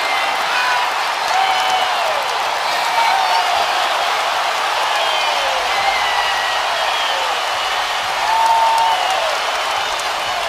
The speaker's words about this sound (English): James trying to quiet the crowd. That ends a 14-0 run.